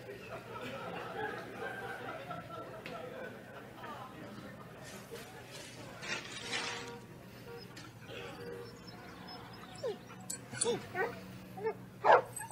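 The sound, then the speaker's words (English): A dog whimpers and lets out a few short, sharp barks and yips toward the end, over a steady low hum and indistinct background chatter. “Look at the cute dog.”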